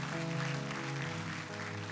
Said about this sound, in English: Yeah, you can definitely clap for that. For sure.